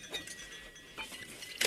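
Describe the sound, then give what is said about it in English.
A few faint, bright glassy clinks and light rattles at irregular intervals, with a sharper clink right at the end, like champagne glasses being handled and touched together. “Champagne, dear, to welcome you home. Let me pour you a glass.”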